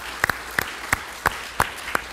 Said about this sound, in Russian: Хорошо, давайте, может, раунд аплодисментов.